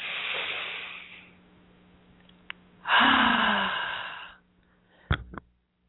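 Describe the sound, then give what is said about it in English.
Two long, airy deep breaths: a breathy exhale fading out, then after a pause a louder, rushing inhale lasting over a second, followed by a couple of faint clicks at the end. “Okay, a couple more deep breaths. Okay, one more.”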